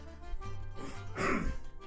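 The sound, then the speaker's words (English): A man clears his throat in a rough, gravelly burst that swells to a harsh rasp near the end, lasting under two seconds with no talking. “Me, gotta clear my throat.”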